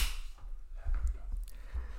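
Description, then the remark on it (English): A handful of sharp, quick hand claps at an uneven pace, fairly quiet, with no voices. “Alright, we gotta clap again.”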